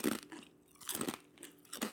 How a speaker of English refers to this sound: I'm, like, really chewing. Because this shit's good.